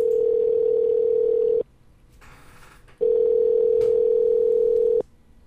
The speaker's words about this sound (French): je te téléphone à l'instant. C'est merveilleux, on entend le Skype sonner.